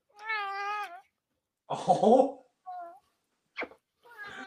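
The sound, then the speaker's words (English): A big purebred ragdoll cat named Lucian meows several times, starting with a long drawn-out meow, then a rougher, breathy call and a few shorter, clipped meows with brief pauses between them. “He's a big ass cat, not gonna lie. He's a ragdoll cat.”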